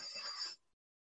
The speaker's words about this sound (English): Yeah, fucking rotary telephone. Still ringing by, like, the two bells inside that have, like, the fucking metal ping.